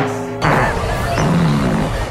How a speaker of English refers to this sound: Fart number six.